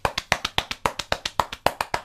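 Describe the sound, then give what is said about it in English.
A steady series of about fifteen quick, dull slaps of a hand against a chest, evenly paced and fairly loud, with no talking. “For those of you at home, I'm slapping my chest kind of like King Kong would if he was, I think, my size.”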